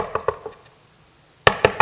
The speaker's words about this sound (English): If I want to make sure the person's home, my knocks get louder and louder and louder. I'm convinced you're home.